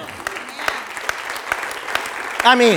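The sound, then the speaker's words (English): An audience claps in a steady, dense patter of applause for a couple's ninth wedding anniversary, with sharp individual claps standing out; near the end a voice cuts in over the clapping. “And that we can applaud that.”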